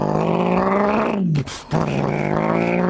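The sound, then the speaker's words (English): A man's voice imitates a deep V8 engine exhaust rumble, a loud, low droning growl that breaks briefly for a breathy rasp midway, then rumbles on steadily to the end. “I know, we sound like two cavemen right now, but it doesn't have that V8 or that V10 noise, the V6, mm-hmm.”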